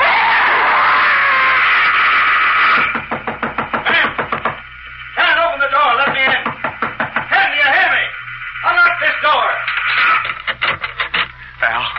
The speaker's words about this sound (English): And then it came. She was knocking at the door.